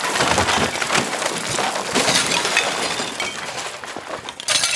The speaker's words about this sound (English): As she finished a twirl with a high kick, her tiny foot hit against the stool in her closet and it tipped, knocking against her towering pile of hats. They cascaded out of the closet in a brightly colored avalanche.